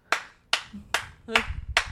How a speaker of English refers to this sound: Good job. You're getting the slow clap. Well done.